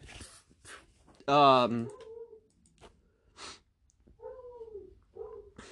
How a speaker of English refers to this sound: My dog is barking. I don't know if you can hear that. I sure hope you can't hear that.